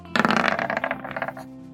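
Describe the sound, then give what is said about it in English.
Dice for an attack roll clatter and tumble across a hard tabletop in a quick burst of rattling clicks, slowing and thinning out before settling on an 8, fairly loud with no voices. “Ooh, that roll, it was not great. That dice is just wary an 8.”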